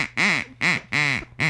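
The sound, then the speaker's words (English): Four loud, nasal quacks from a duck character called Mr. Duck in quick succession, each a buzzy, rising-and-falling honk with brief pauses between, with no talking. “It's Mr. Duck.”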